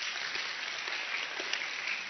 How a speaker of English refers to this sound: Is there anybody here who's been married for 50 years? Oh my gosh. That's the miracle right there. Congratulations, honestly. Well, yeah, thank you for clapping.